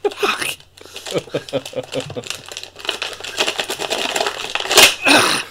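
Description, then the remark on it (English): Busy crinkling and crackling of stiff plastic packaging holding a pair of scissors being pulled and torn open, with irregular rustles and snaps throughout and a sharper burst near the end, while a voice murmurs underneath. “That's pretty good right there. It's called opening a package.”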